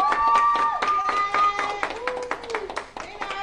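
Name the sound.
audience clapping in celebration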